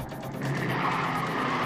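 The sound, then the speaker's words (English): A 1969 Ford Mustang roars along in a chase, its engine a loud, steady rush with a hint of tire squeal, swelling slightly louder partway through and staying sustained. “Oh, look, he's in a Mustang. Looks like he's in a 69 Mustang, too.”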